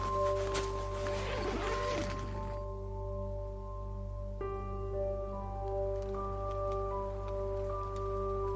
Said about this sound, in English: It started to rain again.